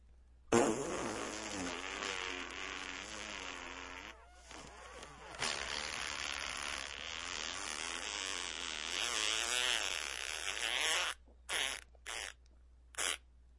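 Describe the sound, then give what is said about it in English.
A long, drawn-out fart rasps loudly for about ten seconds, its buzzy pitch wobbling up and down, then ends in a few short sputtering bursts. “The 10-second fart.”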